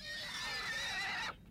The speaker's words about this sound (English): What's that? A horse, my lord. Frightened, I expect. Poor devil. Where is he?